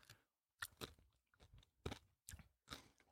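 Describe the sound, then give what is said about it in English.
Loud crunching as someone chews something crisp, with about six sharp bursts of crackle in an uneven rhythm and brief quiet gaps between bites. No talking. “You hear that crunch? Oh, they hear it. Mm. It is so crunchy.”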